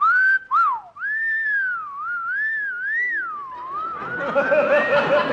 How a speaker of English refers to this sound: What's the matter, boys? Your whistle stuck?